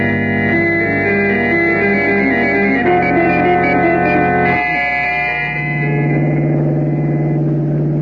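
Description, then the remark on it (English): A hired car's engine drones loudly and continuously with a buzzy, harmonic hum while driving a rough, barely made road through desolate country in Montana, shifting pitch in a couple of abrupt steps as if changing gear, with no voices. “We fly to Helena, Montana, hire a car there, and drive the rest of the way.”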